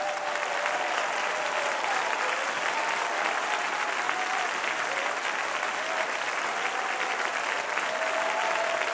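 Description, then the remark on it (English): An audience claps their hands in a dense, steady roar of applause that holds loud and continuous for the full nine seconds, with no pauses or individual claps standing out. “I'm only going to call on you one time tonight, but if you're going to clap your hands, let heaven hear you.”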